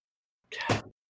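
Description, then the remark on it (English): A door swings shut: a short whooshing rustle that ends in one soft, dull thud, heard on its own with silence before and after. “Hold on, I just gotta shut this door real quick.”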